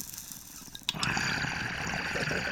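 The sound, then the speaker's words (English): After a second of near-quiet, bubbling water from a bong hit kicks in abruptly and keeps gurgling steadily to the end, with no talking, at the Making Waves Studios in Las Vegas, Nevada. “Oh, crispy rip. It's a great rip, dude.”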